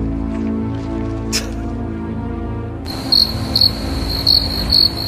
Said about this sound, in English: Play those goddamn crickets.